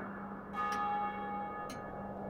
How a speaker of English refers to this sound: He endeavoured to pierce the darkness with his ferret eyes, when the chimes of a neighbouring church struck the four quarters.